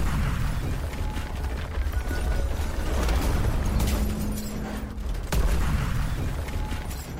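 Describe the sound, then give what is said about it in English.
A dense, steady roar of crashing rubble and crackling fire with heavy low rumbling throughout, broken by a sharp crack a little past five seconds. No one speaks. “Let's get some buildings crashing down in flames right now.”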